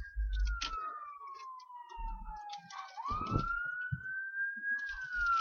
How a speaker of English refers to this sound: Well, that's an ambulance, and yes, they are coming this way.